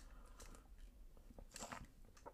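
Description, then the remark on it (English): A quiet sip from a mocktail, with soft wet mouth and slurping noises and a brief crisp burst midway, like ice shifting, and no talking. “Okay, I need another sip of my little mocktail.”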